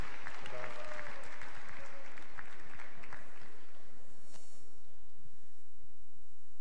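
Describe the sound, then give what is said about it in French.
An audience at a Chanukah evening event applauds the man who organized the evening, clapping loudly in a dense, steady burst of many hands that gradually thins and fades over the last few seconds, with no one speaking. “Voilà, applaudissez-le, pas seulement parce qu'il est beaucoup plus grand que moi, mais parce qu'il fait de très belles et de très grandes choses.”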